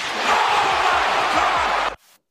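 A chair is banged repeatedly and loudly, several heavy low thuds under a harsh, sustained roar of noise that stops abruptly after about two seconds.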